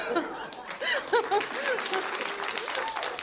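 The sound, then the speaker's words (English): An audience breaks into steady applause, dense continuous clapping lasting a few seconds, mixed with scattered laughter and a few brief voices rising over the crowd. “You lot applaud.”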